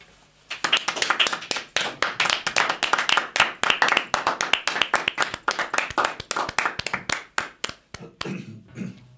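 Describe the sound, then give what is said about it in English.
An audience breaks into applause, a dense, steady patter of many hands clapping at once, sustained for several seconds before thinning out at the end. “Applause.”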